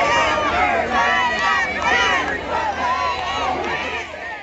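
A large crowd roars and chatters continuously, a dense wash of many voices shouting and cheering at steady, loud volume throughout, with no single speaker standing out.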